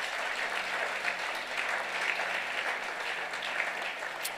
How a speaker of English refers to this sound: Somebody give a hand clap unto the Lord. Praise the name of the Lord. If you want to clap, clap properly, please.